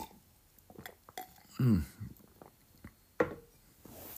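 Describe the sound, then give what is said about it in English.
Quiet sounds of someone taking a drink: a soft slurp and gulp midway, surrounded by faint rustles and small clicks, with a sharp click of the cup toward the end. “Let me just have a sip of my drink.”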